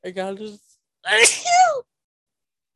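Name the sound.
sneeze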